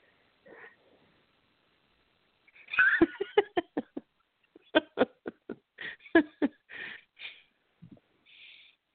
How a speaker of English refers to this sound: Okay, I'm sorry, I'm back. My little dog. I was just complaining.